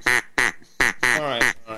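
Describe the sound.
A duck call made by Acme Duck Call, a company from England, blown to make loud, raspy mallard-style quacks: a few evenly spaced single quacks, then a quicker run of several that blur together near the end.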